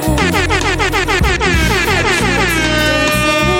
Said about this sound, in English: I promise you I'm gonna pick it back up, but hit me with the air horns real quick.